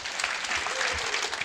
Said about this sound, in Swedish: Ja, men det är bra. Då har vi en applåd för den här panelen.